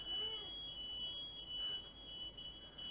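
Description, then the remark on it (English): A building security alarm with motion detectors blares a steady, piercing high-pitched tone without pause, loud, over a rumbling background with faint indistinct voices. “So there's an alarm system in here that has motion detectors.”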